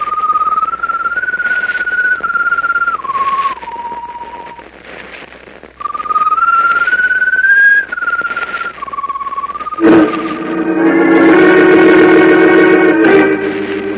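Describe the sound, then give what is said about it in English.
A strange glowing bird perched on top of a mast whistles mournfully in two slow phrases of long, gently sliding notes over a steady rain-like hiss. A fuller, layered tone then swells in toward the end. “As though echoing the doctor's pronouncement of impending doom, the strange glowing bird perched on top of the mast whistles mournfully.”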